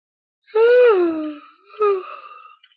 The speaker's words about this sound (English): I sat down in a big comfortable chair, and for the first time, I yawned.